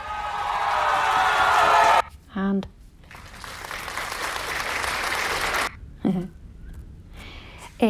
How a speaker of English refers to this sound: So this is our weekly cheer and clap for the essential services. They're quite loud, so watch your ears.